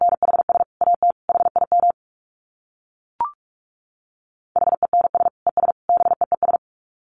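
Rapid Morse code at 45 words per minute: a steady mid-pitched tone keyed into fast dits and dahs, sounding in two bursts separated by a pause broken only by one short blip.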